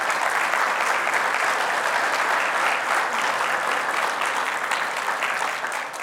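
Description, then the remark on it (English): An audience bursts into a steady round of applause for foster and adoptive families who have stood up, dense overlapping claps holding at a fairly loud, even level for several seconds and easing slightly at the end, with no voices standing out. “So could we give these folks a round of applause, please?”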